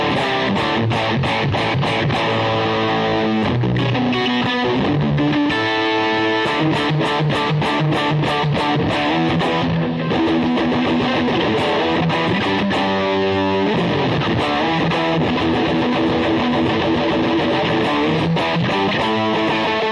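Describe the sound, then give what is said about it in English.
An electric guitar played through a heavy metal distortion pedal plays thick, saturated chords and riffs with a gritty, compressed metal tone, loud, sustained over the whole stretch with rhythmic chugging attacks and no voices. “There's the distortion again.”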